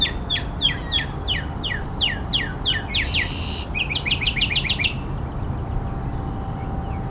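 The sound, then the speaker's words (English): A mockingbird sings right overhead along a train yard next to a harbor, in quick repeated phrases that switch between different chirping patterns, mimicking other birds, then falls quiet, leaving a steady low outdoor rumble. “Mockingbirds pretend to be a lot of different birds.”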